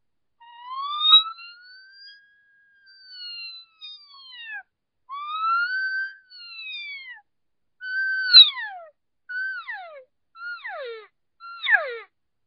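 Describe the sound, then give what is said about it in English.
Cow elk calls blown on a game call: reedy, harmonic mews, the first few long and drawn out, the rest shortening into quick, falling chirps, with no talking. “I just squished it right down to a cow call.”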